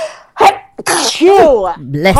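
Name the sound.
sneeze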